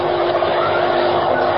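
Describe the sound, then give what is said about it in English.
A loud, steady roar of heavy vehicle engines grinding along, a dense continuous rumble with no breaks and no voices: a line of trucks followed by a swaying, rocking bus creeping up a slope on Forest Hill Pass. “Already the line of trucks creeps up the slope. Behind them, the swaying, rocking bus, brightly lighted, eager boys and girls, knowing nothing of the treacherous mass of rock and earth poised on the heights above.”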